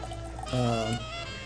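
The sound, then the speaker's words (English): A short pour of campfire whiskey into a glass, with a brief ringing, tonal gurgle that swells for about half a second before fading into quiet. “Let's pour this out and have a sip of campfire whiskey while cowboys and coyotes sing songs under the moonlight.”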